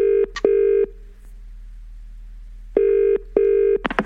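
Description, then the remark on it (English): A telephone rings loudly in two double-burst rings separated by a short pause, a steady electronic trill heard alone, ending with a brief clatter as the line picks up and a caller connects to a phone-in. “Let's move to the phones.”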